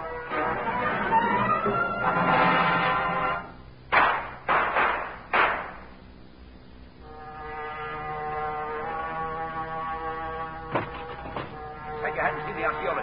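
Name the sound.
gunshots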